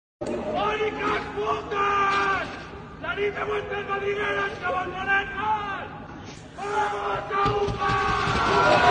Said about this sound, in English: And at that moment, the blinds of the rest of the windows in the apartment block shoot up to reveal the silhouettes of more than 100 male students who all start to cheer and to whistle.